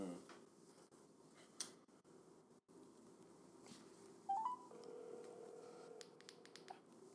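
A phone keypad being dialed to call someone's wife: a few quick, soft taps and a short electronic beep tone over a steady low background hum with faint murmuring.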